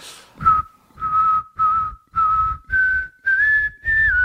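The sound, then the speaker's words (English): Someone whistles a steady, clear tone in a series of about seven short bursts, each lasting roughly half a second, the pitch creeping slightly higher toward the end. Close and fairly loud, no talking. “And my third whistle?”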